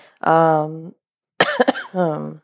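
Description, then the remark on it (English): A fairly loud cluster of two or three sharp, rasping coughs from a person with a respiratory illness, framed by drawn-out hoarse vocal sounds before and after, with no clear speech. “I apologize if there's some coughs that make it through the editing, and also to the editor who's going to have to edit out a lot of my coughs.”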